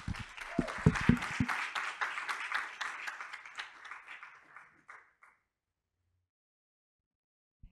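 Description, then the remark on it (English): A crowd at the Sinai Temple Mental Health Center's annual signature event in a synagogue breaks into a dense round of applause, many hands clapping in a steady patter that swells briefly, then tapers off over about five seconds into silence. “So I hope that you will help me give a round of applause”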